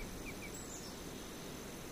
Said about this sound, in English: There's no bell here to call your attention back. Only soft breezes and bird songs that wane in and out of focus.